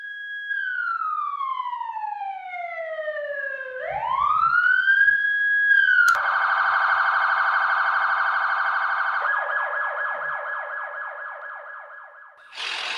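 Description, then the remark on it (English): A loud police siren, not from a real emergency, wails with its pitch sliding down and back up, then switches to a rapid pulsing yelp that continues steadily before cutting off abruptly. No voices are present. “The sirens you are about to hear are not real.”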